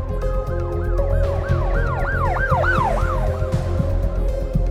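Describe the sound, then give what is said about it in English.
A wailing ambulance siren sweeps up and down in rapid repeated cycles over a low rumbling engine, loud, with no one talking; the ambulance is arriving quickly for a man who was shot, to rush him to St. Mary's Mercy Hospital. “An ambulance arrived quickly, pulling Lyman out of the car and rushing him to St.”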